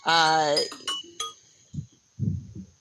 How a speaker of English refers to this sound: Oh, that's your timer. Oh, so that was deliberate. That was my timer, yeah,